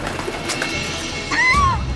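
A single bird call rings out near the end, a clear tonal whistle with a rising then falling sweep, fairly loud over a faint, steady background hiss.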